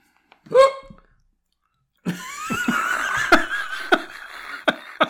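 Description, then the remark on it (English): One sharp, voiced hiccup pops out, then after a short silence comes a stretch of breathy laughter and scattered clicks. “That was a very genuine and real hiccup.”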